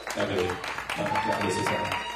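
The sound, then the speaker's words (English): A crowd claps steadily in a dense, sustained round of applause for the illustrations, with some voices mixed in underneath the clapping throughout. “So give my illustrations a round of applause.”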